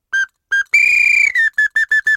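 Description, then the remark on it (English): A musician's whistled rendition of a song sparrow's song: two separate steady notes, then a long buzzy trilled note, then a run of five quick, even notes at the same pitch, with no talking. “Learning to Listen - Patterns in Songs of the Song Sparrow”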